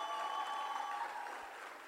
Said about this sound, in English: You can do better than that. Clap for girl power.